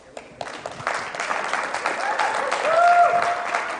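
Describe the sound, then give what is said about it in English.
An audience bursts into applause, a dense, steady wash of many hands clapping that swells slightly toward the end, with a brief whistle or cheer rising above it near the close. “I don't know how we get rules like that when the scripture says, clap your hands, all you people.”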